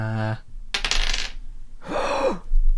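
Dice clatter across a hard table in two short rolls, with a bright rattling quality and a brief pause between them; no one speaks.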